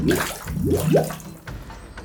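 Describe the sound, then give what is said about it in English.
Thick green goo pours into an old bathtub with a steady wet rush, coating the bottom, broken by three quick rising glugs early on. Moderately loud, with no voices. “Pouring the contents inside, Evan watched the green goo coat the bottom of the walls, forming to the tub.”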